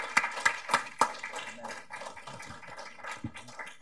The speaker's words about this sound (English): So let's give a round of applause to our excellent panel here today.